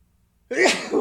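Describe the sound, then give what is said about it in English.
A single sudden sneeze bursts out after a moment of near silence, loud, with a sharp breathy onset and a brief tail. “Bless you.”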